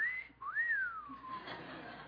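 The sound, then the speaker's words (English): A person whistles in imitation of a pet bird that whistled at visitors to the house: a short held note, a brief pause, then a rising swoop that glides down, like a wolf whistle, clear with no talking. “It was a very bad move, because whenever anybody would come over to the house, the bird would sit there and whistle at them.”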